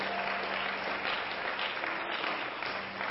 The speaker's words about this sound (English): Why don't all the home folks give our guests a good hand clap today?